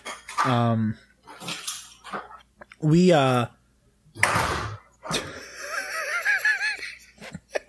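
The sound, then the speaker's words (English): Door sounds from the entrance to a villa, heard from its lobby: a few loud, squeaky hinge creaks rising and falling in pitch, with a sharp knock or clatter in between and a long wavering creak at the end. “That's because I'm in my lobby, so like the door, the entrance to our to my villa is like right there.”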